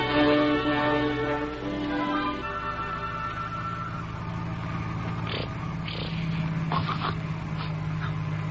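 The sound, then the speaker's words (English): A child snores in short, raspy breaths that repeat at a steady rhythm in a car that is being driven, set against a continuous low engine hum and rumble, with no talking. “The kid snoring?”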